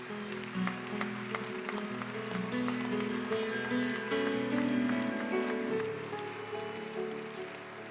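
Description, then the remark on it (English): A church audience gives the Lord a clap offering, clapping steadily and densely for several seconds, a dense patter of hands over sustained musical tones playing underneath, with no talking. “Would you give the Lord a clap offering today?”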